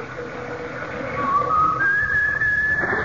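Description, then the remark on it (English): A kettle whistling on the stove, its shrill tone climbing in steps from a low hoot to a piercing, steady high whistle that holds to the end, with no voices. “Lucky I left the kettle out.”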